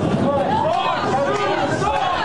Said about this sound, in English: A lot of people in the crowd are not wearing masks. We're keeping a respectful distance, but a loud and very boisterous crowd. You'll start hearing them start up here.